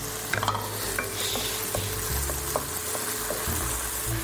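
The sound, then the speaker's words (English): Tomatoes sizzle steadily in a hot pan with the heat turned back up, cooking down until soft while making akuri, a continuous crackling hiss broken by several sharp clicks and scrapes as they are stirred. No one speaks. “we are going to turn the heat back up so that the tomatoes can now cook down.”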